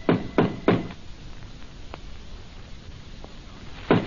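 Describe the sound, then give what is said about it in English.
Three quick, solid knocks in a code on the wooden door of a store-like building, in a steady rhythm, followed by a quiet pause with faint background noise, then a single further knock near the end. “He and Jonah halt before the door. Roy knocks.”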